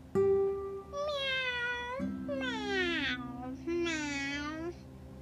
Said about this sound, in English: Heard some meowing. What is that? Thought Lily.